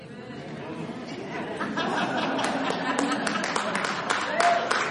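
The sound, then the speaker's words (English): An audience of women exclaiming "oh" together, a swelling murmur of many overlapping voices with a few scattered claps, holding steady and fairly loud for several seconds. “First time in 10 years, spontaneous women all over the place going, oh!”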